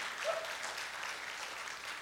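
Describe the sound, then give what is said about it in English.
A church audience at a Nazarene church in Greenbrier, Arkansas applauds steadily after hearing that 795 people attended on Easter, many hands clapping together in a dense, even patter that holds at a moderate level for about two seconds with no voices over it. “Yeah, you can clap.”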